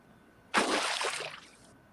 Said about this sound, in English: Bruh. Man, just splashing everywhere. Bro, you gotta save that for the bathtub.